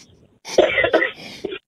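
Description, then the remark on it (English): A loud cough bursts out on the air in a couple of harsh, rasping pulses, with a short throaty catch at the end, heard on its own with no talking over it. “I just want to say that was very, very the season of you to cough on the air.”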